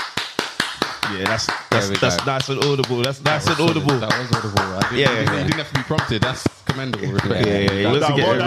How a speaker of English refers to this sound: What am I applauding here today? Let me know just for confirmation. You're applauding because your team lost